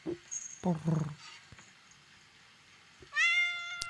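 A kitten meows in short, high-pitched cries: a quick pair early on, a lull, then one louder, drawn-out mew near the end, close and clear.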